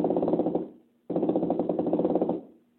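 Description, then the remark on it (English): A theremin played at its lowest note gives a raspy, creaking buzz with a rapid rattling pulse, heard in two bursts: a short one that fades out, then a longer one that also trails away. “And if you go to the lowest note, you can get a creaking sound, almost like a flatulent sound.”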